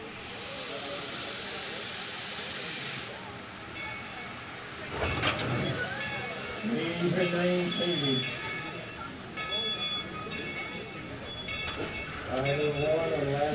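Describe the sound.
A loud, steady hiss of steam from the Dollywood Express steam train fills the first few seconds, then cuts off. Voices talk over a low rumbling engine and faint high whines for the rest.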